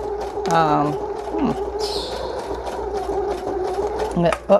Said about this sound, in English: So, might be good not to use too thick of material because you don't want your sewing machine choking up on you.